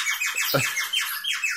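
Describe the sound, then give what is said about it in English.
A bird whistle blown hard and loud by a trap drummer during a film love scene, giving a rapid string of shrill, warbling chirps that repeat in a steady rhythm, with no talking. “And my trap drummer is like blowing the life out of this.”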